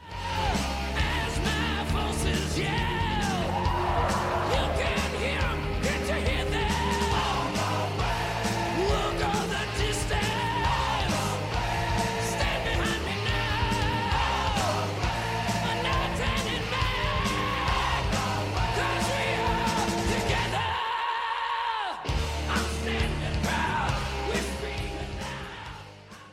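A loud heavy metal rock song from a 1985 album recording plays throughout, with dense distorted guitars, pounding drums and shouted, wailing vocals. The bass drops out briefly near the end before the full band crashes back in.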